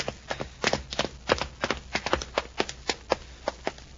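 Footsteps going down stairs into a basement: a quick series of around a dozen sharp, hard thuds in an uneven but steady rhythm, with no voices over them.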